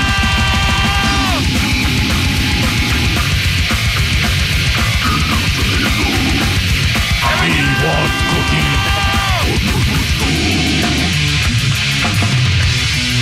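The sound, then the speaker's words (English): Death metal plays loud and relentless, a dense wall of distorted guitars and rapid pounding drums with harsh, shouted vocals cutting through, never easing for the whole stretch. “Terrible music.”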